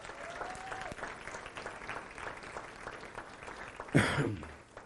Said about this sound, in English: Give God a big hand clap for that.